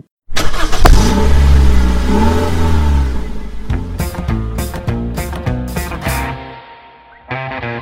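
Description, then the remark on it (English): A car engine starts up and revs repeatedly in sharp bursts, rising and falling in pitch as the car pulls away, loud and steady with no talking. “I think we're going to jump in the car and head off to Thunderwing.”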